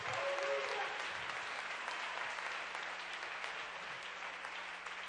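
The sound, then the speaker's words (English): An audience claps their hands in praise in a dense, sustained wash of applause that holds steady for several seconds, with a faint low hum running underneath and a few voices briefly audible at the start. “Somebody clap your hands and give them praise.”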